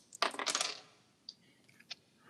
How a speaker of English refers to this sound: I warmed up my dice, and I think they're serving me well, because that is a 9.